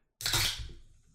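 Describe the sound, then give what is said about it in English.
A Dr Pepper soda bottle cracks open with a sudden sharp hiss of escaping gas that quickly fades into a softer, fizzing sputter, with no talking. “So let's commence the pop.”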